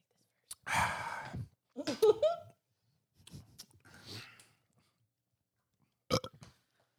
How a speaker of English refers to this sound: Ooh, when you burp it out, it's fucking fire. Literally? Yeah. Yeah, when you burp it, hell yeah.